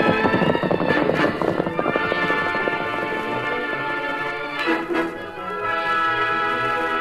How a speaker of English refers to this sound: The paint horse is running right with him. But what's he traveling so fast for?